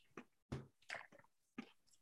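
Someone chews a crunchy pretzel snack, with four or five irregular, crisp crunches and soft squishy pauses between them. No one speaks.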